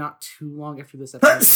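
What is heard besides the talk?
sneeze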